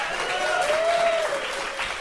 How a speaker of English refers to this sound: How about a round of applause for Sean Hatton, everyone?